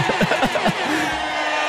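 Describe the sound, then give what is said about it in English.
A voice imitates a wildly cheering crowd: a few short voiced bursts give way to a steady, breathy roar of hissing noise that holds at an even level until the end. “Ah, crowd goes wild.”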